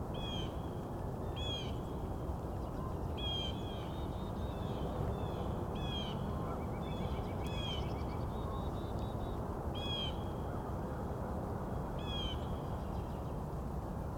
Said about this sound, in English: A couple more crows headed this way. There we go. It's the crows.